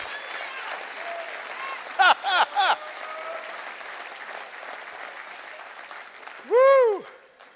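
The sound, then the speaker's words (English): An audience claps hands steadily throughout, answering a call to clap their hands and say "I'm going to be a Christian," with a cluster of louder bursts early on and a rising, wavering voice calling out over the clapping near the end. “Come on, clap your hands and say, "I'm going to be a Christian."”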